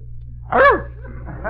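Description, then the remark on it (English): A single short bark from the dog Snookums, thin and band-limited as it comes through a telephone line with a bad connection, with a low electrical hum underneath and a fainter muffled sound trailing after. “What's the matter with his voice? Bad connection.”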